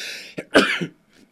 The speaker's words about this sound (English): Excuse me. Sorry about that. I hate sneezing on air, but hey, that's sometimes that happens.